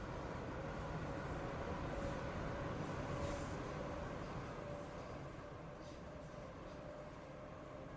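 A train rumbles steadily along the rails, heard from inside as a man rides it home, a continuous low roar with faint rhythmic clatter and a thin tonal whine, no voices.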